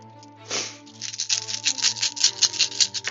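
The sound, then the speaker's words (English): Twelve six-sided dice clatter and rattle across a hard surface, one falling on the floor, a dense run of quick, irregular clicks that keeps going for a few seconds over a low steady hum, with no voices. “Roll 12d6.”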